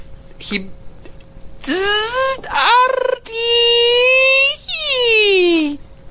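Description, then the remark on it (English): A voice imitates an old dial-up modem as the sound of a Modron in a game: a brief squeak, then loud, sustained nasal tones that warble and slide in pitch over hissy static, in a few bursts ending on a falling whine. “The thing begins buzzing and whirring and emitting out of game. It sounds like an old-fashioned modem.”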